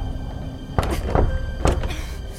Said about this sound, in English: The door's stuck! The door's stuck!